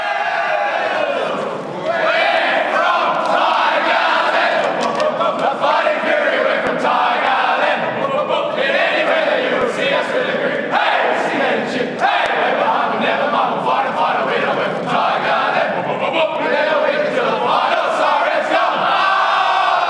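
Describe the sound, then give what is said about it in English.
The Richmond Lions' AFL victory song bellowed by a crowd of voices after the game, loud and unbroken for about twenty seconds, with rowdy shouts and cheers mixed into the chanting. “But for now, we'll leave you with the winning song from the Richmond Lions.”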